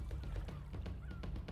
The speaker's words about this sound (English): Well, now there's a bunch of seagulls in the way.